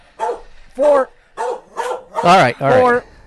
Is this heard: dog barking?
yes